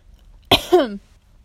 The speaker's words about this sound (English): I'm coughing in everybody's ears, aren't I?